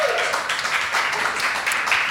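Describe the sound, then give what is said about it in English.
A live audience applauds steadily at the end of an evening show, a dense wash of many hands clapping at an even, fairly loud level throughout, with no clear pauses and a faint cheer or whistle near the end. “Thank you, everyone, for coming out tonight. Give yourselves Thank a round you, of yes. applause.”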